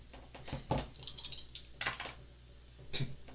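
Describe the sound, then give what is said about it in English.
Three eight-sided dice are rolled for spell attack damage in a tabletop role-playing game, clattering and tumbling across a hard tabletop in a few quick bursts of small, sharp clicks, moderately loud, with no one talking. “So I need 3d8. Roll 3d8.”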